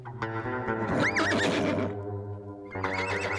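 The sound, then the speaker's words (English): A horse whinnies loudly, a long quavering neigh with rising and falling pitch, followed by a shorter snort-like call near the end over a steady low hum. “Time to get off your horse.”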